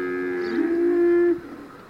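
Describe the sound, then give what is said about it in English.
A cow lets out one long, low moo, steady, holding for over a second before breaking off into quiet outdoor background, recorded by the side of the road. No one speaks. “I stopped by the side of the road and recorded them”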